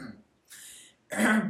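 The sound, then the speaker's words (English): A person clears their throat twice, a breathy rasp followed by a louder, gravelly hack, with no talking around it. “How many times am I going to clear my throat?”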